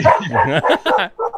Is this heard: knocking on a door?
no